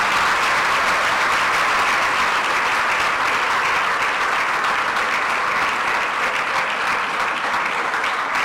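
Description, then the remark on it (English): Sustained applause from a crowd as a woman takes her seat, a dense, steady wash of many hands clapping at an even loudness without pause. “Continue to keep on clapping until she sits down.”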